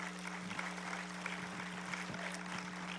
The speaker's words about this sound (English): We got an awesome team. I'm thankful for them. But I'll look, yeah, go ahead, give them a hand clap.